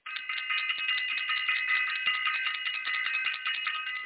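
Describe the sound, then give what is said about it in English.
A bell is rung for the Wednesday night Self-Invested class. It rings steadily for about four seconds, a bright, high-pitched metallic tone with a quick shimmering flutter, fairly loud and alone with no talking. “Got to ring the bell for self-invested.”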